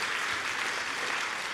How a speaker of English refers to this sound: Come on and give Jesus some praise. Come on, that's good. Yeah. Come on, if we're going to clap, let's do it well. Come on, I like that.